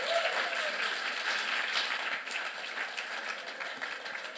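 An audience breaks into steady, dense applause, many hands clapping together in a continuous wash of sound that holds at a fairly even loudness throughout, with no voices standing out.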